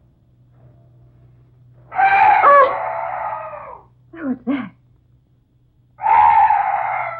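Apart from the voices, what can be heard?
weird night bird call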